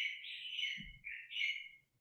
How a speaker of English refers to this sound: Gosh, I can hear those beautiful birds in your jungle behind.